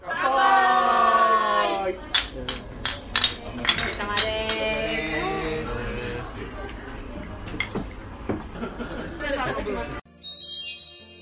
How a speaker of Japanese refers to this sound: というわけで、はい、乾杯の様子でした。